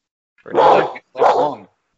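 Two drawn-out, harmonic dog barks, each lasting about half a second with a brief gap between them, with no talking over them.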